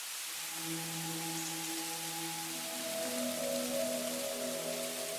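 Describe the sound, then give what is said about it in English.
Quaking aspen leaves in Fish Lake National Forest, among some 47,000 aspen trunks, rattle in the wind as a dense, continuous rustling hiss that swells slightly over a few seconds, with faint steady humming tones underneath and no voices. “You look around at the sea of spindly white trunks and listen to the building rattle of the flapping leaves that give the quaking aspen its name.”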